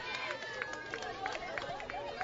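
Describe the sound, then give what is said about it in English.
A baseball crowd cheering in the top half of the seventh inning, with runners on second and third, three balls, two strikes and one out: a steady, dense roar of many overlapping voices with scattered higher shouts poking through, holding at a fairly even level for the whole stretch. “You can hear the crowd ratcheting it up here for both sides.”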